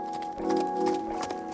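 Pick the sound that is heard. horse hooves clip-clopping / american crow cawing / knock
horse hooves clip-clopping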